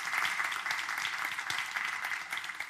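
An audience at a morning church service applauds a great-grandmother with four generations of her family present, a dense wash of many hands clapping at once, holding an even, moderately loud level throughout with no voices rising above it.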